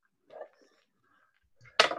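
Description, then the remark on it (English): Dice rattle and tumble across a table, rolled for damage in a tabletop game. A few faint clicks come first, then a sudden loud burst of clattering at the end. Nobody speaks. “So I haven't used dice in so long.”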